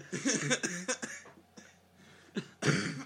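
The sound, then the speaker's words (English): A run of harsh coughs from someone inhaling pieces of banana bread while eating it: several quick bursts in the first second, then sputtering hacks and a final loud cough near the end. “This cough is helping no one. You're inhaling these pieces of banana bread.”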